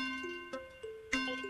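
countdown clock ticking

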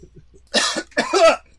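cough

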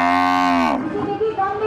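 cow mooing

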